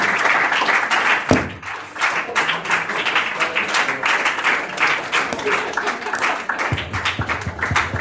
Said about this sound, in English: So with a round of applause, let's welcome Dr. Gyan and a standing ovation.